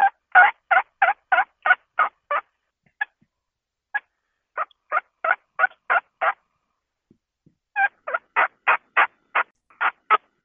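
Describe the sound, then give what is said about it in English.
Soft tree yelps of a turkey hen call, given in several runs of quick, evenly spaced raspy notes with brief pauses between the runs, clear with no talking. “So once that daylight's starting to come up, the birds are starting to gobble, I like to do a soft tree yelp.”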